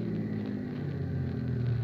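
A bus pulling in to one of its regular stops, its heavy engine giving a steady low rumble with a droning hum, fairly loud, with no voices.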